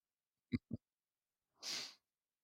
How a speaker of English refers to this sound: Bless you.